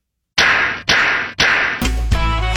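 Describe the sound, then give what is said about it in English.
Three loud, sharp face slaps in an ABC television promo land in steady succession about half a second apart, each ringing briefly before the next, then a burst of music takes over. “Don't miss all your favorite shows, now with unexpected face slaps.”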